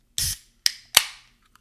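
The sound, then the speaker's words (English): A can of lemon lime seltzer being opened: three quick, sharp cracks and pops from the tab, the last trailing into a brief fizzing hiss that fades fast. No one speaks. “Alright, I gotta grab a refreshing beverage here.”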